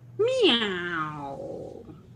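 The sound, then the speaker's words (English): A single drawn-out meow from the cat Miss Mogg, clear, rising sharply in pitch and then sliding down as it fades over nearly two seconds, with a faint low hum in the background. “Meow. I see you have a fan in Miss Mogg.”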